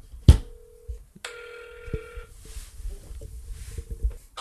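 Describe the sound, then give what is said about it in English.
A click, then an outgoing phone call's electronic ringing tone sounds in two steady bursts, moderately loud and close, followed by faint handling noise and low rumble. “Call him up. Text or call him. Get him on the phone.”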